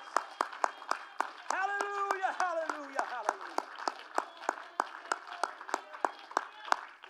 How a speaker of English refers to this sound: Clap your hands one more time. Would you? Thank you.